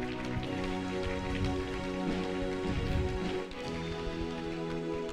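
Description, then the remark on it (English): An audience claps steadily for about five seconds as a clap offering of praise to the Lord, a dense, even patter of many hands that holds at a constant loudness, with a sustained tonal hum running underneath. “Give the Lord a clap offering of praise for it.”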